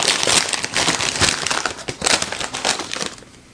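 household object, snack bag being opened

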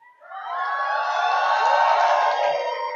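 crowd, audience shouting and cheering

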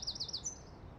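bird, birdsong

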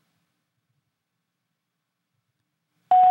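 signal or alarm, voicemail answering machine beep

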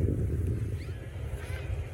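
nature, wind blowing outdoors

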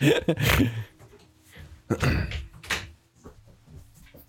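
household object, door being closed

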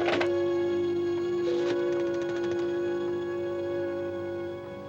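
household object, telephone being dialed

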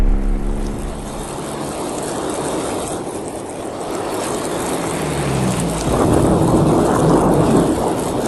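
nature, thunder and rain storm

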